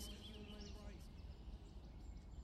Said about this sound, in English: I love a song with bird song in it.